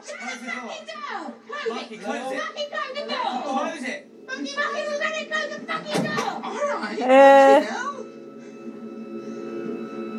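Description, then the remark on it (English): People chatter as a heavy fire exit door bangs open with a sharp clunk, followed by a loud rising creak or squeal and a steady faint tone lingering afterward. “Don't go through the fire exit.”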